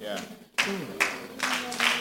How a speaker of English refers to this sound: Some of you are clapping.